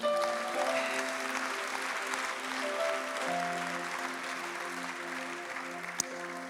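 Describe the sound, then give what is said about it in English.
A crowd applauds steadily for several seconds, giving a hand clap for Jesus, a dense wash of clapping over sustained keyboard chords, with one sharp click near the end. “Somebody give him a hand clap.”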